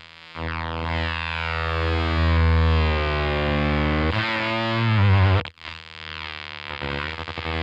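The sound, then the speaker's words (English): Thick, saturated guitar fuzz from a Fuzz World pedal, using its feedback loop momentary buttons, swells into sustained, whining feedback tones that bend and shift pitch, cutting out abruptly near the end before the distorted drone resumes. No one speaks. “So I love the Fuzz World having feedback loop momentary buttons.”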